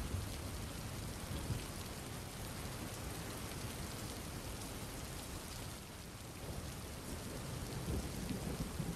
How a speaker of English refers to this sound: From here, you notice that the rain slowly begins to become not only heavier, but you begin to hear the sounds of thunder.